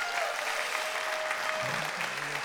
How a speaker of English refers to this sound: As always, let's give our worship team, look at them, they're already getting going. Give our worship team a round of applause.